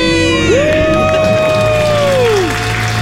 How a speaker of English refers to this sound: Count them down. Let's hear your debt-free scream. 3, 2, 1. We're debt-free!